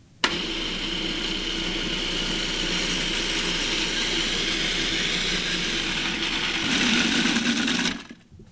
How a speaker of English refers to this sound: Next, we'll add the 3 cups of loosely packed basil leaves and the olive oil. And the olive oil I'm just going to pour into the top of the food processor while it's processing.